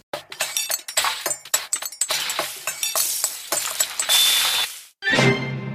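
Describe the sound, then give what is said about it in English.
A quick, rhythmic series of bright clinks, like silverware tapped together, plays in a video game cooking jingle, then a short pause and a final ringing chime. “And it just sounds like, you know, you're clinking your, you know, silverware together.”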